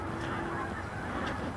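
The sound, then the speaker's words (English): Geese honk repeatedly overhead in a loose, irregular chorus as they fly in from the northeast, moderately loud against a steady outdoor background on a sunny day, with overlapping calls and no clear rhythm. “Bunch of disorganized geese coming overhead.”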